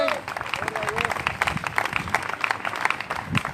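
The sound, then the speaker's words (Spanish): A church audience applauds for God in a steady burst of dense, overlapping claps lasting several seconds, with a few voices calling out faintly underneath. “¡Aplauda para Dios!”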